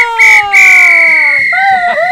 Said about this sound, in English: I give you the return of the whistle!